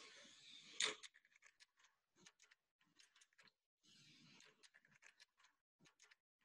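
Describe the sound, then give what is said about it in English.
Keys unlocking a door over and over, with metallic clicks, scrapes and rattles coming in short bursts separated by brief pauses. There is no talking. “The answer is unlocking a door.”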